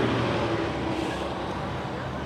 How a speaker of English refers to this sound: And while a bus did just go zooming past, folks could stand in the median, protected from the traffic, and wait for the bus to cross.